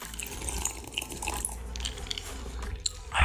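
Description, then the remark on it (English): Wet slurping and liquid sounds from someone sipping a mixed drink of vodka and tequila, with small clicks and gulps over a steady low background rumble and a louder swallow at the end. “I'm gonna take another sip.”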